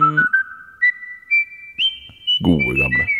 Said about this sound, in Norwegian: Gode gamle plystredjinger.